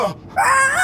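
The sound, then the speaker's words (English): A brief pause, then a man's voice bursts into a loud, strained, high-pitched scream about bees that holds steady for about half a second, harsh. “And now he's just screaming about bees.”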